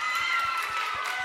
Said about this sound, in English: Everyone give her a good snapping applause.